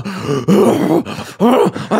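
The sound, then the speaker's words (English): A voice imitates a man's heavy, horse-like breathing in a shower: several loud, groaning huffs and snorts in quick succession, with brief pauses between them. “It literally sounded like a horse was showering. Like like the breathing that was going on.”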